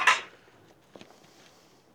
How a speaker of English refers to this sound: And welcome to the Dish Cast, where we're going to do some dishes